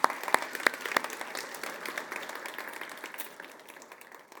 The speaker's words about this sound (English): Let's give the Lord a hand clap of praise this morning.